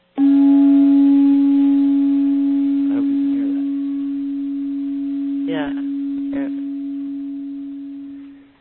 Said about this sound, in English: I like the sound of that guitar, or I like the sound of that chime, right? And I've got some chimes here.